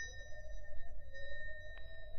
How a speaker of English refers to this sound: Find a bell button. No, there's a bell pull.